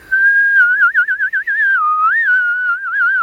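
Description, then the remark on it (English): A little girl whistles one long, loud, continuous tone that wavers and trills in the middle before holding steady again, with no other sounds. “The little girl jumped down from her chair and went to the table and whistled long and loud.”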